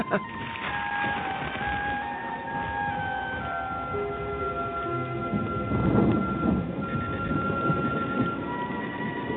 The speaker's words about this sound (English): Oh, it's a storm.